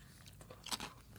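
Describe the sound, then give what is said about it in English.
Someone bites into and chews a grilled chicken dish with rice and vegetables, giving a few soft crunchy crackles with one sharper, louder crunch partway through. No one speaks, and the sound is fairly quiet overall. “Can I just take a bite of this chicken thing here?”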